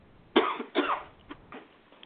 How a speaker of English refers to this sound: Oh, God, now I'm getting that Hillary cough. Look out.